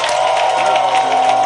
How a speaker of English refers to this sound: And give the Lord a mighty, mighty hand clap. Your clap is very weak.